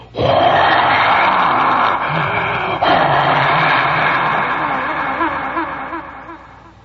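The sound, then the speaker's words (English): A big baseball stadium crowd roars loudly and steadily for several seconds as the Cincinnati Reds team charges out onto the field in new red and white spring uniforms, a dense wash of cheering voices echoing out over the river that slowly fades near the end. “And at that point, the club came charging out on the field in their brand new spring uniforms, red and white, bright red hats, and the crowd just a fantastic roar.”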